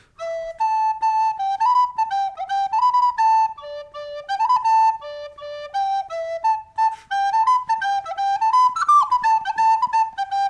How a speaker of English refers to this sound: Little Freddy had finished eating his meal, and very quietly he just took his whistle out of his pocket and started to play just to see what would happen.